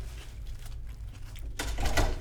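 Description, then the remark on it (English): A low steady hum runs throughout, then someone comes in and shuts a door with a broad, muffled rattle and thud lasting about half a second near the end. No one speaks. “Somebody just came in and closed the door.”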